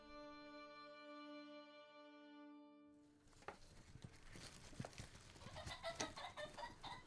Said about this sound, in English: Oh, there's a very loud goose. Very loud this morning.